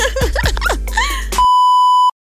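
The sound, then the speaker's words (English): A loud, steady electronic beep sounds alone for under a second, a pure sustained tone cutting off abruptly, preceded by a jumble of chirpy, warbling sound effects. “After the beep, your hosts, JB and T, keep it real, raw, and raunchy.”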